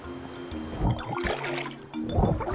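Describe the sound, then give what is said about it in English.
Turbulent river water rushes and splashes over sharp, slippery rocks in a steady wash during a rafting descent in Jilin, China, with a few louder surges and a low tonal hum running underneath. “尽量不要下水，因为它这个河水比较湍急，下面的石头呢都比较尖滑。”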